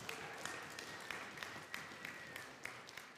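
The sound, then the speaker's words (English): An audience applauds steadily for a few seconds after a speaker announces he has been accepted into a seminary program, a dense patter of many hands clapping with a few sharper claps standing out, and no voices on top. “I didn't do that for applause.”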